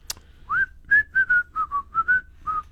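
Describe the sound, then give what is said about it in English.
A person whistles a short, clear melody of about nine quick notes, fairly loud, with nobody speaking over it. “Can you whistle?”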